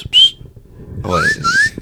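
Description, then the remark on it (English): A brief, shrill whistle tone sounds, then after a pause a longer, wavering whistle blast rises over faint background noise, moderately loud; a single whistle signalling the start of the second half. “They just only do one whistle to start.”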